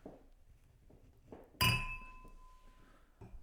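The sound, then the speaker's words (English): A single sharp clink of a wine glass rings out as a glass is fetched for a 2019 Clare Valley Vermentino from Kerner Wines. Its bright tone lingers and fades over about a second, with quiet shuffling and faint background noise around it. “Let me get you a glass.”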